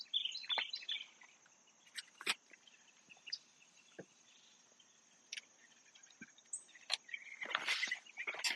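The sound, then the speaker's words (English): Outdoor ambience in a mostly wooded city backyard with 100-foot-tall pin oaks: a steady high insect drone runs throughout, while several birds chirp and tweet intermittently, including a brief burst of busier calls near the end; no talking. “Birds sound lovely today.”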